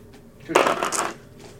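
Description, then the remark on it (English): Dice rattle and clatter across a hard tabletop in a short, bright burst lasting about half a second, then settle into quiet with no one speaking. “Because that's more than dice.”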